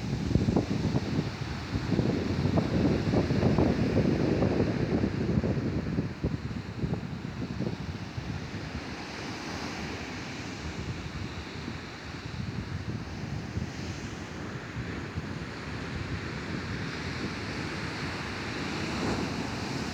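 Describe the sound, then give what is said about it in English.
Waves crash and wash onto a beach in a steady, continuous roar, with gusting wind buffeting the microphone. The surf is loud, swelling and easing slightly, with no voices. “I find the sound of the sea crashing onto the beach and the ebb and flow of the tide”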